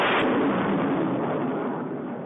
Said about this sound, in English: You know it's professional when there's an explosion in the theme song.